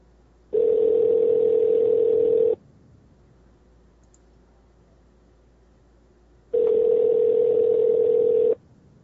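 Two steady telephone ringback tones of about two seconds each, separated by a long silent gap, heard clearly over the line while a call is being placed. No one speaks.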